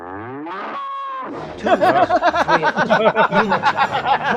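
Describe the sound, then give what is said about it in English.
Cattle moo on an old-fashioned cattle drive in a couple of drawn-out, wavering bellows, then a louder, crowded chorus of many animals lowing in quick, pulsing overlapping calls. “It's a real old-fashioned cattle drive.”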